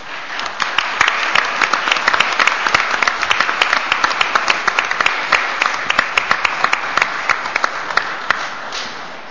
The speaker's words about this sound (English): And please give them a round of applause for all their hard work on your behalf.